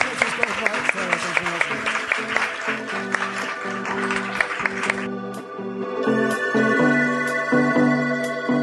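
An audience applauds with dense, steady clapping for about five seconds while a sustained musical tone plays underneath. The clapping then fades, leaving mostly the music with a few scattered claps.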